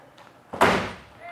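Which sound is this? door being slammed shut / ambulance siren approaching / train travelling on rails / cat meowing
door being slammed shut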